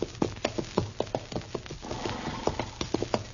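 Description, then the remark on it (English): Steady clip-clop of a horse's hooves at an even walking pace on dusty ground in Kansas, heading back to Dodge, a dozen or so sharp hoofbeats, with no voices. “Darn horse. Seems he's just bound to stomp all the dust and Kansas in my eyes.”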